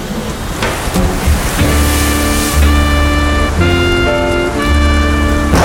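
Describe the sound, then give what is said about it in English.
A loud, steady roar of heavy rain and storm wind fills the whole clip, with low sustained tones droning beneath it and no voices. “Damn the storm!”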